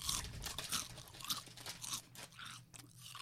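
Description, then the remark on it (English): Crisps being crunched and chewed, a steady run of crisp, crackly bites with no pauses, fairly quiet overall and with no one speaking. “Guess what flavour crisps they are from the crunch.”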